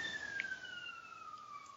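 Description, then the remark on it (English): An ambulance siren sounds faintly in the background as one long, steady wail that slowly slides downward in pitch, with no talking over it. “So Ian's token ambulance in the background there?”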